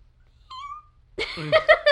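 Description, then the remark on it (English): A person imitates a kitten: first a thin, high, breaking meow, then a louder run of several squeaky mews in quick succession. “I think it works better when my voice breaks. It sounds more like a kitten.”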